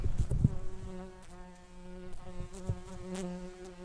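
Bees buzz steadily, a continuous droning hum with a few soft bumps and rustles near the start, as caught and marked bees are let go. No one speaks.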